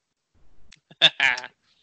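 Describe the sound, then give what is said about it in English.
A goat lets out a short, quavering bleat in two quick bursts, fairly loud, with no talking around it. “Our fake sponsor is Root Beer Goats. Get your favorite frothy drinks straight from your nanny.”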